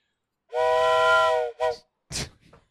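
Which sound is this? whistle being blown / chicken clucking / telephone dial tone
whistle being blown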